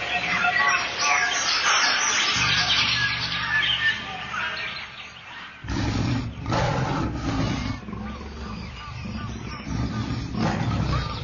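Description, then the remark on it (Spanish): A jaguar roars in deep, rumbling bursts, loud, repeating several times over a dense backdrop of chirping birds and jungle ambience. “En la Amazonía colombiana, venezolana, brasileña, ecuatoriana, entre las numerosas tribus indígenas que pueblan esas espesas selvas, se rinde culto especial al jaguar o tigre americano.”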